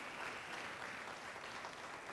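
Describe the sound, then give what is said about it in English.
A crowd applauds steadily, many hands clapping at once in a dense, continuous wash of sound that stays even and fairly loud throughout, with no voices standing out. “That's why we're clapping.”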